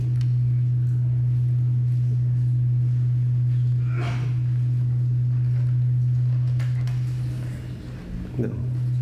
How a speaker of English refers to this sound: Can you hear that? Can y'all hear that? Yes. It's really loud. The humming is really loud.